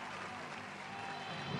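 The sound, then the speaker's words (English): An audience applauds after Bill Gates speaks about Microsoft's Macintosh software, a steady wash of many hands clapping at once, sustained at an even loudness throughout the short stretch with no clear voices standing out. “The audience loves it and gives them a big round of applause.”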